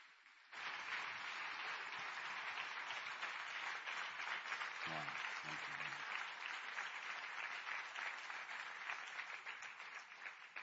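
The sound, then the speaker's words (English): Sustained audience applause at a church service, thanking those who have served the country, begins abruptly after a brief pause and continues steadily for about ten seconds, dense and even, with a faint voice briefly audible underneath around the middle. “And if we could give another round of applause.”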